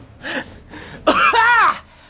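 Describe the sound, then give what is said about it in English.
Two short, rough coughs followed by a loud, drawn-out hacking cough with a strained, voiced rasp, alone, lasting about two seconds, after taking a big drag of a cigarette. “and I take a big drag of my cigarette and I cough so loudly.”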